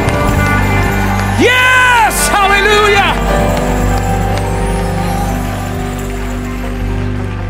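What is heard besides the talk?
audience clapping and shouting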